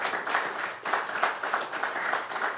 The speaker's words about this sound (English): I know you're not clapping for me, but it feels like it.